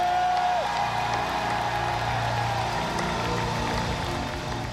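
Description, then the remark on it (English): Steady, dense clapping from a crowd in worship of Jesus fills the whole stretch, with scattered whoops and shouts mixed in, loud and continuous throughout. “I'm going to start right now with a clap and a shout.”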